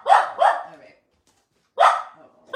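A dog barks twice in quick succession, pauses, then lets out another bark with a fourth starting at the end; the barks are loud and sharp.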